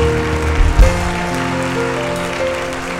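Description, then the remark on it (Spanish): An audience applauds loudly in praise of God, dense continuous clapping filling all three seconds, with sustained music tones playing underneath and no clear speech. “¿Alguien le puede dar un fuerte aplauso al Dios que venció, al Dios que resucitó, al Dios que está vivo, al Dios que sana, al Dios que salva?”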